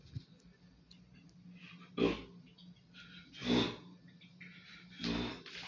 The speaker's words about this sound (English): Y'all heard them burps. Excuse me, motherfucker.